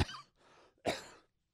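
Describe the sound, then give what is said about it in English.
A person coughs twice in close succession, each a sharp, raspy burst, the second louder than the first, with no talking. “Pardon the coughing, but what am I going to do? I'm human, I cough, so what?”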